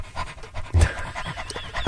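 A dog pants steadily, quick rhythmic breaths repeating without pause for the whole stretch, with no talking over it.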